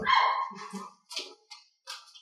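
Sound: dog barking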